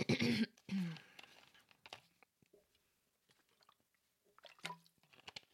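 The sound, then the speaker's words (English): Quiet sipping and swallowing of water as a person takes a drink: a couple of wet slurps and gulps at first, then small squishy mouth noises and a soft throat-clearing sound, with no talking. “I'm going to take a drink of water.”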